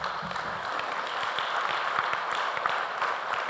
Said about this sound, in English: Amen? Let's give a clap offering to Jesus Christ.